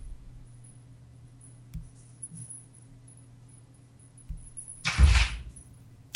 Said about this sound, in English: Sorry, my dog's banging at the door, okay. So he's distracting me.